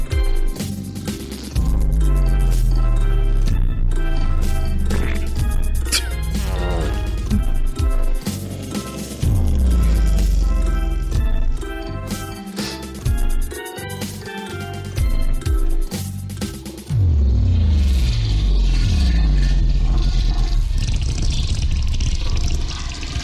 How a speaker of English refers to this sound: Did this man chop and screw the …? Chop and screw the fucking whole thing. This, so it was just, I took some farts and then I put them over top.